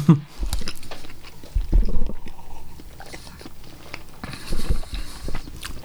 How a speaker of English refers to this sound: Now eat some chocolate cake and drink the beer through the cake while you're chewing it.